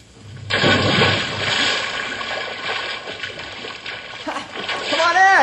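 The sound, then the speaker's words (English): A loud splash as someone jumps into an old swimming hole, followed by several seconds of churning, sloshing water, with a brief voice rising near the end. “so when we get to the water, all we have to do is just jump in and cool off”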